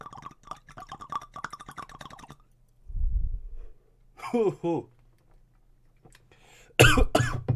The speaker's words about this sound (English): Nice. Gotta love some coughing on the podcast. There you go.